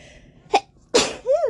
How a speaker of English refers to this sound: Gotta sneeze.